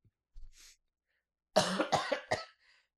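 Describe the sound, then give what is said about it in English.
A man, a roommate with pneumonia, coughs in the background: a faint breath, then a rough burst of three or four hacking coughs in quick succession, moderately loud, with no talking. “Excuse me, my idiot roommate continues to cough with his endless pneumonia.”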